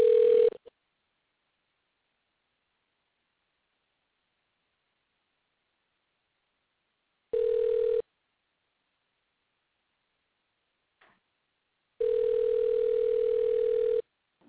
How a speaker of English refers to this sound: And I'm thinking, no, actually, I'm going to call you. But it would be good if she picked up the phone.